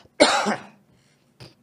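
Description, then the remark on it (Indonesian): A person with a cough gives a sharp, loud cough that fades over about half a second, followed by a short, softer cough or throat-clearing after a brief pause, with no talking. “Sorry bro, gue juga lagi batuk nih.”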